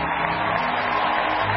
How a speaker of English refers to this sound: Please stand. Keep clapping till I ask you to stop.